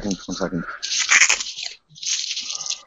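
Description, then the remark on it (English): Loud crunching of crisp food in two noisy bursts with short crackly snaps, preceded by a brief voiced sound. “So, was that crunchy enough for you?”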